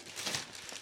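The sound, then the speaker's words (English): A brief burst of rustling and crinkling packaging, like wrapping being pulled aside as a box holding a Trilby hat is opened, with no one speaking. “We want the rustling and everything.”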